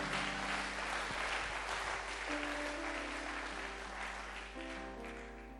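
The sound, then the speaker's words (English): An audience claps steadily for several seconds at a preacher's call during a sermon, a dense wash of many hands applauding together, with a low organ-like tone held beneath it and the applause tapering slightly near the end. “Somebody clap your hands if you are clapping.”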